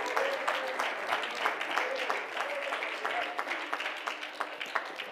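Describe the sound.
An audience claps their hands together to praise God in the morning, a steady, continuous patter of many sharp claps, with a few voices faintly mixed in underneath.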